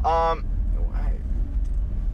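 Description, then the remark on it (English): Steady low engine rumble fills the inside of a silver 2007 Toyota Sienna minivan idling while stopped at a traffic light, with a short burst of voice at the very start and faint murmurs over the hum. “We essentially film live from my 2007 Toyota Sienna Silver Edition.”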